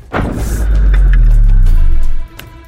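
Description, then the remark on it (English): A single loud, illegal homemade firework, launched into the air, explodes and booms out, followed by a deep rumbling roar that lingers for about two seconds before cutting off abruptly. No voices are heard. “Their creators recklessly launch them into the air, and they explode.”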